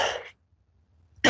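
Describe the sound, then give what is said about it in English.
Two loud coughs from someone with a bad cold, separated by about a second of near silence, the second one starting abruptly at the end, with no talking in between. “Excuse me, I've just had one of the terrible colds and coughs and things, you know, splittering away.”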